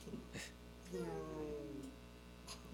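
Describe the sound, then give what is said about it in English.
A person imitates a cat with a single drawn-out, whiny meow lasting about a second, clear, framed by a few brief breathy sounds before and after. “I remember he used to use sound effects, like his own sound effects. Yeah. Guns go pew pew. Meow.”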